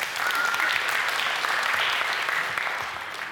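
A crowd claps steadily for a few seconds, a dense, even patter of many hands that holds at full strength before easing off slightly at the end, applauding a woman who correctly answered a Bible question (Romans 1:16).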